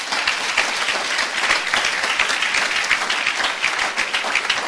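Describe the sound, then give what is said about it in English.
A crowd bursts into sustained applause as a clap offering to God, many hands clapping in a dense, steady roar that stays loud for several seconds without fading. “I think he deserves a clap offering.”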